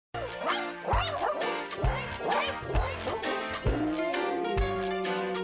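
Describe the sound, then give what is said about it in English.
Dog barks pitched into a bouncy holiday tune, yapping in quick rhythmic bursts over a steady beat and jingly backing, loud throughout with no talking. “Come on, who has the best holiday music?”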